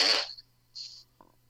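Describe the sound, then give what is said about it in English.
A short, loud blown raspberry made with the mouth to imitate a fart, followed by a softer hissy breath and a faint click, with no talking. “I somehow think that was a raspberry.”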